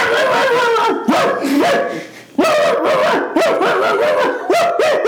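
A slobbering pug barks loudly in a rapid, continuous string of high yappy barks and yelps, with a brief dip before the barking surges again, and no one speaking.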